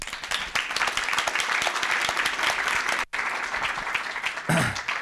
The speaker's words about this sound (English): please a big round of applause for our panel.